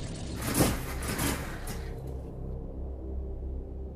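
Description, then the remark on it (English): A car engine, picking up speed, sputters with a rough, breathy burst of noise and dies, quickly fading and leaving a low, uneven rumble trailing off. No voices. “With a sputter, the engine dies.”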